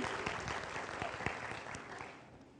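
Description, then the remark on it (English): An audience claps together in a dense, steady patter of many hands, moderately loud and even, with a few sharper claps standing out before the applause thins and fades near the end. “Y'all didn't clap with enthusiasm.”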